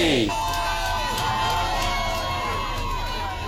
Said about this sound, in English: That's a crowd of protesters after weeks of negotiations failed to reach a deal. United Auto Workers officially went on strike at midnight.